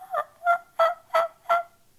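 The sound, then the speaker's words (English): A series of five soft, evenly spaced turkey yelps from a call, each a short, slightly raspy note repeated at a steady rhythm, heard alone with no talking. “A soft yelp, just a”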